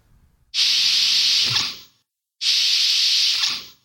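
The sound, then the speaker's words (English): Two sci-fi sliding door swooshes, each a loud, airy hiss lasting over a second and ending in a soft thud as it fades, with a short silent gap between them. “All right, here's some door swooshes.”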